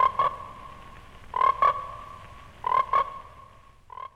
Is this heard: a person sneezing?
no